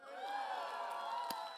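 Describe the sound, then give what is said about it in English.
An audience at a church service shouts and cheers back for under two seconds in response to a pastor asking how they are doing this morning, with a man at the back screaming. Many overlapping voices whoop and yell at a steady, moderately loud level, with a brief sharp knock near the end. “I appreciate the guy in the back that screamed a little bit.”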